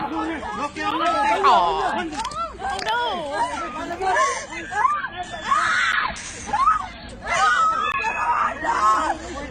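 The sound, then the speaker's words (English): In a played video of a woman's arrest, several people scream and wail in distress over a chaotic babble of overlapping voices, the cries rising and falling continuously for several seconds, loud. “Why are they screaming like she's getting beat?”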